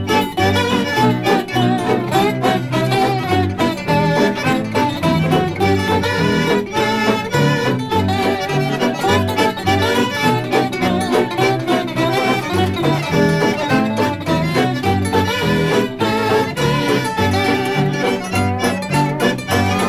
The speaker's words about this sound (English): Cue outro music.